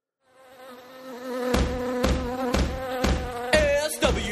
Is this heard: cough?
no